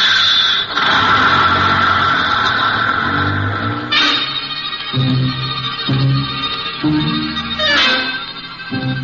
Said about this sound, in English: Honey and I stand there like a couple of outfielders watching one sail over the fence while Colonel Lucius Porteous drives away in Ackerman's dinky little sightseeing bus.